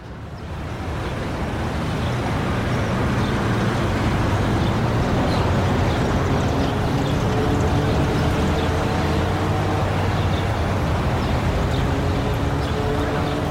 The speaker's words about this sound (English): So we've just walked up Wellington Street, just gone underneath a railway bridge, and we're just by Armley Gyratory, which is a really big roundabout. It's quite noisy, and we've just come a little bit away to get a bit of quiet.